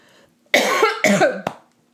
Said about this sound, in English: I made myself cough. I was so upset.